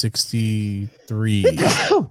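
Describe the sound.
A voiced, drawn-out intake builds up, then breaks into a loud, breathy sneeze burst, all within about two seconds.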